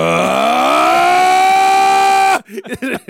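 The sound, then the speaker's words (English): Man-Thing, a swamp monster, lets out a loud roar that sweeps upward in pitch, then holds a steady, siren-like wail for about two seconds before cutting off abruptly as people begin talking. “And Man-Thing lets out a terrifying roar.”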